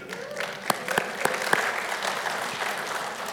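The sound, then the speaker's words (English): An audience bursts into steady applause at the news that the speaker's son is getting married, many hands clapping at once in a dense, crackling wash with a few sharper claps standing out, lasting a few seconds at moderate volume. “My wife was not clapping at that.”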